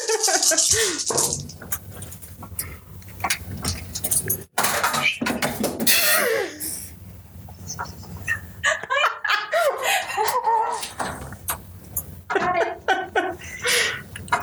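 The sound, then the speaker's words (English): A big handful of dice rattles and clatters in a long, dense burst of sharp clicks, while people laugh and chuckle over the noise. “That's a lot of dice.”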